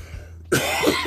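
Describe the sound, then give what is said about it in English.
A single loud cough bursts out after a brief quiet moment, harsh and throaty with a rough, raspy tail. “I didn't want to cough at the same time.”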